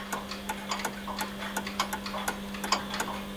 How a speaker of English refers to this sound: he works in a small one-room workshop. On every wall hang clocks, large and small, keeping time.